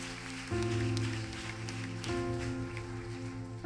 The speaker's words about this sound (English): So now you honored me with that hand clap. Now let's honor Jesus with a hand clap of joy.